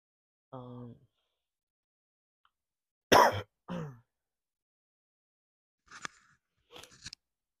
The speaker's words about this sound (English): Cough is getting worse.